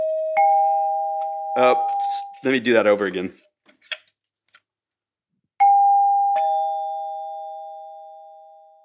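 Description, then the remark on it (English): An electric doorbell chime plays its two-note ding-dong, a person speaks briefly, and then the chime sounds again, loud, its second tone ringing out in a long fade. “And then out of the war, in the 50s, they realized that you could make reasonably pleasant electric sounds without actually using those long, cumbersome bells.”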